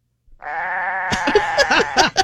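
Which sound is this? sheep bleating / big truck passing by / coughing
sheep bleating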